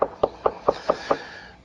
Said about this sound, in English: he went to his friend and he started asking his friend. He knocked on the door of his friend.